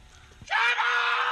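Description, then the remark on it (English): A loud, sustained human scream erupts suddenly after a quiet moment and holds strong, strained and harmonic-rich, for nearly a second: a pizza delivery man screaming to announce his arrival because the family's doorbell is broken. “They ordered a pizza, and they told the delivery guy, hey, just scream when you're here.”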